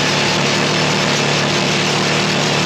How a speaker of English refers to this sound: A conventional rock drill reaches 118 decibels and stays on.